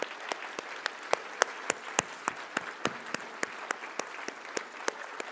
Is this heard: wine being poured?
no